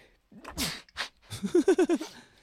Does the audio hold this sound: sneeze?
yes